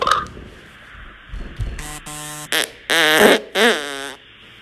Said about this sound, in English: The squeaky part. It was an elk. It was an elk.